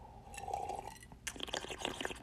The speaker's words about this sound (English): Hold on a second. I got to take another sip.